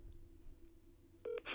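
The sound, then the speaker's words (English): A low steady hum, then near the end a short electronic phone dialing tone beeps once as a phone call is placed, followed by a brief burst of hiss. Nobody speaks. “You and your famous calls.”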